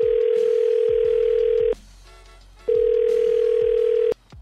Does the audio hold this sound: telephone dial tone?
yes